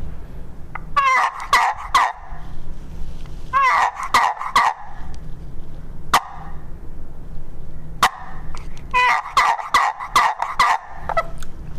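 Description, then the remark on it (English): Coarse, raspy gobbler yelps from a handheld turkey call come in several quick bursts of three or four notes, loud, with sharp clicks between the series and a low hum underneath. “gobbler yelp”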